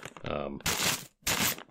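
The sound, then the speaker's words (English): A brief voice is followed by two bursts of loud plastic baggie crinkling, separated by a short pause, each a dense, hissy rustle lasting under half a second. “I've got a baggie.”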